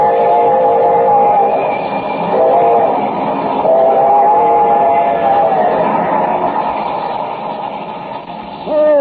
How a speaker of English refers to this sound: Have I time, I wonder? Can I reach that bridge before the train does?